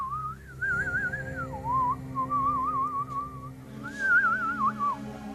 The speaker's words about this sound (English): Use my iPhone, pull it out, and open my flute app that I have. Oh, okay. And I, instead of texting my favorite instrument, I play...